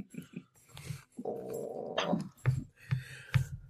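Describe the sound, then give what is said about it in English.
A puppy whimpers, a drawn-out whine in the middle broken up by short, soft yips and snuffly whines, with no one talking. “Oh, did you dry off, puppy?”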